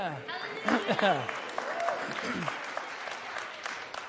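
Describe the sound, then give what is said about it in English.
An audience at a church service bursts into loud cheering and applause as a baptism is announced, with excited voices whooping over steady clapping that continues throughout. “You can yell it even a little louder.”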